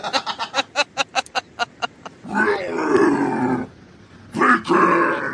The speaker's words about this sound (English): You actually don't hear the word bacon. You hear growling. But you know intuitively that's what he's yelling.